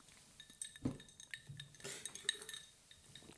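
Glasses clink together several times in quick succession during a toast, bright ringing taps with a little shuffling noise in the background and no talking.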